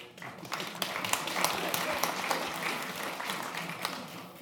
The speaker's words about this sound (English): They applaud the robot, never applaud a minister, do they? It's typical.